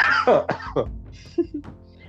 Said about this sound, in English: Is it wrong when people cough to say coronavirus?